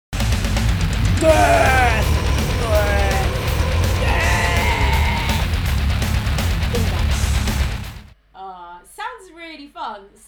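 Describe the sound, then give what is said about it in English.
Repeated shrill, wavering 8-bit video game screams ring out over a loud, noisy background for several seconds, then the sound cuts off and a person briefly speaks. “It is quite graphic and there's a lot of screaming.”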